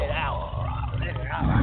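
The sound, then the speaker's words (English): A person lets out a loud, sustained roar in imitation of a lion, roaring for victory on The Lion's Den, a rough, voiced bellow lasting under two seconds and swelling slightly stronger at the end. “That's right, so go ahead and just roar for it. Roar for victory.”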